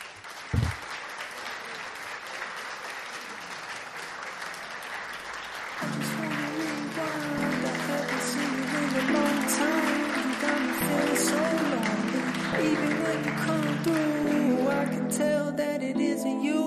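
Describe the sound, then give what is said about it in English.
A crowd claps steadily in a dense, continuous burst of applause that keeps going as a music track with a low bassline fades in partway through and plays beneath it. “Let's go. Clap.”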